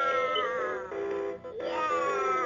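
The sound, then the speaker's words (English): A battery-powered analog rooster-call alarm clock goes off, sounding a loud, drawn-out, wavering crow with a reedy, harmonic-rich tone that briefly dips in the middle before swelling again. No talking. “my sister gave me this alarm clock. It's battery-powered analog, so...”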